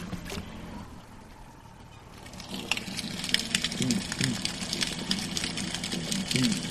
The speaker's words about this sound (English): You hear the crackling sound. Those are snapping shrimp. They're only about an inch long, and they have one enlarged claw. It sounds like frying bacon in a pan. They produce this frying bacon sound by snapping that claw.